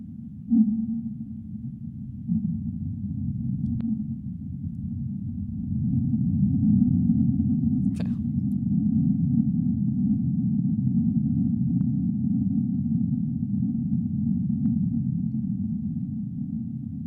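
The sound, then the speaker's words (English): A deep, continuous underwater rumble of an oncoming earthquake, recorded among whales, swells and churns low in pitch, sped up, with a faint steady tone above it and occasional sharp clicks; no one speaks. “And there's the rumbling noise is the earthquake coming up.”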